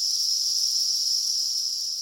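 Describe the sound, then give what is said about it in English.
A dense, continuous high-pitched drone of many cicadas that have emerged en masse from underground, flying around trying to find mates, buzzing together steady and loud without a break, like a chorus filling the air. “So cicadas spend most of their young lives underground feeding on roots, and they emerge en masse, flying around, trying to find mates, making a lot of noise.”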